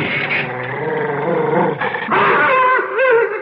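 A dog growls loudly and continuously, protesting as it is brought inside through a door, a rough, snarling rumble that rises into harsher, higher-pitched snarls toward the end, with no voices.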